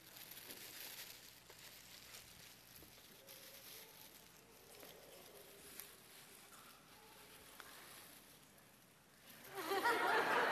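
Soft, steady crinkling of wrapping paper being handled, ending in a louder rustling tear near the end, with faint chuckles in the background.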